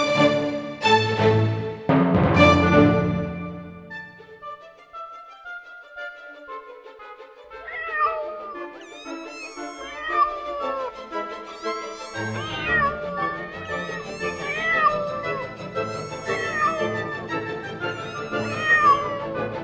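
A cat meows loudly and insistently, opening with a few strong, drawn-out cries, then a long run of wavering, overlapping meows and yowls, with no talking.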